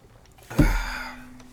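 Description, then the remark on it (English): A single sharp clink of glasses in a toast, followed by a bright ringing tone that fades out over about half a second. “I'm going to drink to that. Yeah, cheers. Cheers to knowing nothing.”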